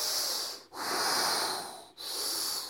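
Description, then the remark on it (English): Forceful, audible breathing demonstrated as an 'outside sound' yoga breathing technique, used instead of ujjayi breath, with three loud, hissing breaths pushed in and out in quick succession, each separated by a brief pause. The breaths are clear, with no talking. “You activate, you do like what I have you do, that outside sound breathing.”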